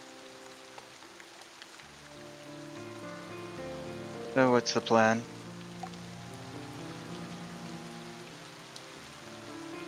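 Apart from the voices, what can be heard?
rain falling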